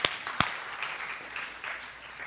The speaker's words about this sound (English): Let's give that man a round of applause.